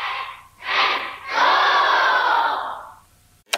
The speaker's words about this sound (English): And if one yells loud enough, his body moves smoothly and the motion of his sword is quickened. The trainees are taught to utter yells that resonate their whole bodies.